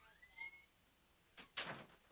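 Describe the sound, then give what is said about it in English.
A faint squeak, then a brief scrape and a soft muffled thud as a door is pushed shut, quiet, with no voices. “Close the door, Pop-Pop.”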